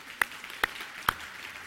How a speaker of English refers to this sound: Give them a hand of applause. Let's just clap.